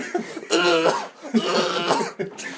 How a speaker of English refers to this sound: As he's coughing up his lung on the side.